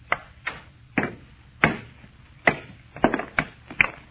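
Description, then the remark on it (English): A hammer strikes a nearly solid metal meteor stone along a fissure, breaking it clean in half, in a series of about ten sharp, cracking blows, unevenly spaced and quickening toward the end, each a hard knock with a brief ringing tail and no voices. “All I'm going to do is try and break it along this fissure.”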